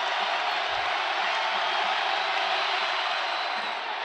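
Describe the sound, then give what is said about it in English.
A large basketball arena crowd roars and cheers after a player misses a free throw, in a dense, sustained wall of noise, loud and unbroken for the full few seconds, with no single voice standing out. “After Jordan Miller missed that free throw, the crowd's going nuts.”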